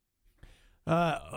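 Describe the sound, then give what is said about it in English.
A single sneeze: a soft, breathy intake followed by a sudden loud, voiced burst that trails off briefly. “Bless you.”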